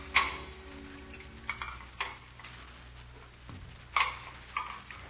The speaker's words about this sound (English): while I caught up with the dishes.